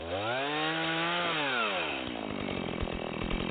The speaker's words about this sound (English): Kind of late for chainsaw carving.